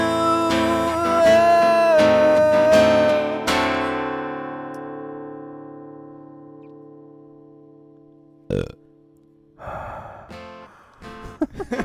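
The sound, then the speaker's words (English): A ringing musical chord slowly fades to near silence, then several loud, raspy heavy breaths follow, rough gasping inhales and exhales with a creepy edge. “If you ever record it, have the heavy breathing at the end. Creepy heavy breathing.”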